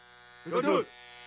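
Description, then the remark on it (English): A short burst of electric hair clippers buzzing, giving a standard army buzz cut, lasting under half a second before cutting off into quiet background hum. “Jaesun turned in his tailored Berluti suits for fatigues, his off-whites for combat boots, and his luxurious conditioned hair for the standard army buzz cut.”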